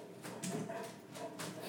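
dog barking

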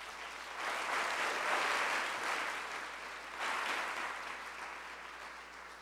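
audience applause

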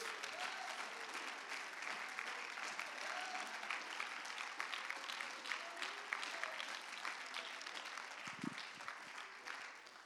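audience clapping hands

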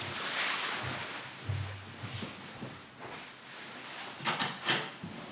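door being opened

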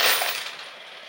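coins dropping

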